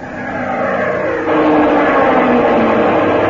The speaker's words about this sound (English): Plane diving at 5 o'clock.